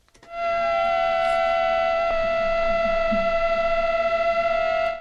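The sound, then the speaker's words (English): Male and female mosquito wingbeats hum together as a steady, high, reedy drone. The two adapt their wingbeat frequencies so their tones lock into harmony, with a brief wobble in pitch partway through. One mosquito is tethered to a pin with superglue. No one speaks. “Now, what's actually happening is that the two mosquitoes are adapting the beating frequency of their wings so that they harmonise.”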